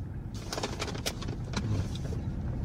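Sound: inside a car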